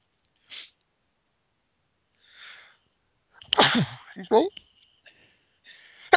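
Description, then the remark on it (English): A sharp sneeze bursts out after a couple of quick breathy intakes, followed by brief murmured talk and faint sniffles. “Bless you. Thank you.”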